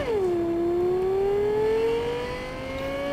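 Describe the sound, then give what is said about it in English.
The engine of a fast black car in a video game hums loudly and steadily, its pitch dipping briefly then slowly climbing as it revs, with no one talking over it. “That sounds like that car I was in, a black car. It was like the fast one.”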